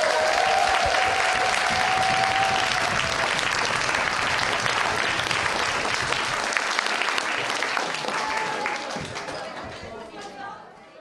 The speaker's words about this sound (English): Thank you so much for coming today. You've been such a warm, lovely audience, and we'll see you next time. Round of applause.